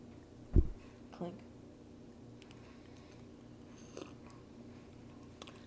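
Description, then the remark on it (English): Quiet sips of old fashioned cocktails from glasses, with a sharp clink near the start, a second soft knock, then scattered faint mouth and glass sounds in hushed quiet. “Listeners, what you hear us sipping on and reacting to is the drink that we chose for this movie, which is an old fashioned.”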